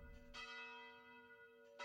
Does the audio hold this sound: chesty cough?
no